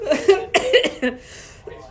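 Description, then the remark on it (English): A run of dry coughs, four or five sharp bursts in quick succession, then a short pause and one more cough at the end. “Don't cough. You're going to scare people.”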